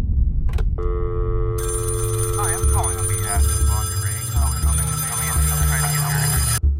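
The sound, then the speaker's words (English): A telephone rings with a steady, bright electronic tone that holds for several seconds, while indistinct voice-like warbles and a low rumbling bed play underneath it. “Our story begins with a phone call.”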